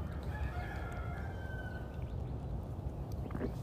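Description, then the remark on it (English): Birds call outside; one gives a long, drawn-out call lasting over a second, over a steady, dense background hum of outdoor noise. Nobody speaks. “There's a lot of birds here, man.”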